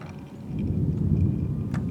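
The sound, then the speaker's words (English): A deep, rolling rumble of thunder from an approaching storm, heard in an open field as the sky grows darker, swells slightly louder over a couple of seconds, low and continuous, with no voices present. “I think they're freaking out because of the thunder. Well, that's getting louder and closer, and it's getting darker.”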